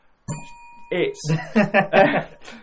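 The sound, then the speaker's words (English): A single bright bell is rung sharply to cover swearing, its tone lingering for under a second, then voices come in, talking and chuckling over the fading ring. “When his form dipped and it didn't quite come off for him, didn't give to ring the bell, because I'm going to swear.”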